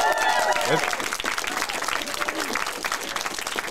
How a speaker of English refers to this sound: Welcome to our first ever live episode of the ACCESS VFX podcast, where we're recording at DNEG's London studio. So should we give that a big round of applause?